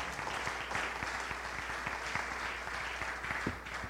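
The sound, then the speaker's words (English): A church audience claps steadily in warm, continuous applause, giving praise to God after a prayer, many hands overlapping into a dense patter at a fairly even level throughout. “Would you clap your hands and give God praise before you're seated?”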